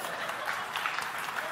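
A room full of people claps steadily, the dense patter of many hands holding an even level throughout without building or fading, heard from a moderate distance.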